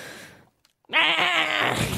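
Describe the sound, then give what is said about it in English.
A person imitates a goat with one loud, quavering, nasal bleat that wavers in pitch for about a second, after a short silence and a fading, breathy sound. “Can you give us your best goat impression?”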